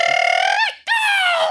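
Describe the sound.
A voice imitates a rooster's crow in two loud, drawn-out phrases: a high, steady call that bends and wavers at its end, a brief break, then a second call that slowly slides down in pitch.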